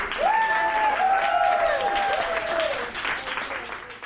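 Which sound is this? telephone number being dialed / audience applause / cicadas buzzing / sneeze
audience applause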